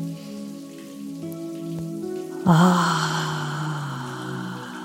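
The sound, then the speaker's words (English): A soft humming drone plays alone, then about halfway through a shower bursts on and water streams down in a steady, full hiss that continues beneath the lingering tones. “And when the water is ready, take a deep breath and step fully into the path of the water.”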